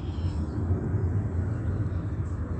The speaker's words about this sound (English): And that's the state playing a tape of a sound of a plane taking off. There ain't no airport right here at Holt and Euclid. It's hovering and then heightening in elevation, playing the same tape over and over again.